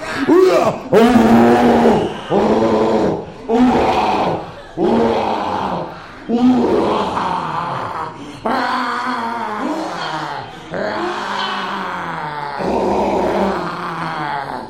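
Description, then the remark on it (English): A group of people roars loudly, about eight long, throaty bursts in a steady rhythm, each voice-filled shout following right after the last with only brief pauses. “Roar! Roar! Roar! Hear me roar! Everyone roar! Get it out!”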